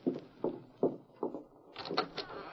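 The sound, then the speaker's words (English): Four firm, evenly spaced knocks on a door, followed by the rattle and creak of the door being opened. No one speaks. “He's coming to the door. You answer it.”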